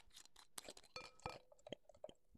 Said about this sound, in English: So today we are having 24K champagne for SMR sakes. Let's crack it open.